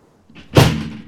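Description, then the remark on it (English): A heavy metal hatch door swings and slams shut with one loud, booming impact that rings briefly before fading, with no voices over it. “The bolts, the wing bolts that hold the door shut, they have to be tightened by hammering with the sledge.”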